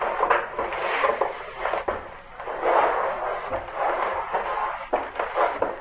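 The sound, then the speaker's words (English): Wooden doors creak and strain under repeated pressure, a continuous grinding rasp swelling and easing in uneven surges, with a few sharp knocks of wood giving slightly. “I am waiting for the doors to give way. Do you hear them?”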